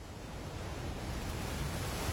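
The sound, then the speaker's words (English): A dense, continuous roar of rushing whitewater, steady and loud throughout with no pauses, a river in full flood at a whitewater rafting facility by the River Tees in the north of England. “We shot it in a whitewater facility, a whitewater rafting facility up by the River Tees in the north of England.”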